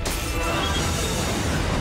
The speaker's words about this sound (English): Back to Doctor Who, and we start this episode in the midst of some disastrous action as a spaceship seems to be crashing.